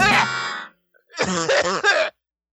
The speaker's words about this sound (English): That's a wicked cough you got. You okay?